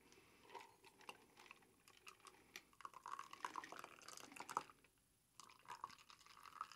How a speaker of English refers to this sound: I'm going to pour the rest of it in here so I don't get too much ice melt.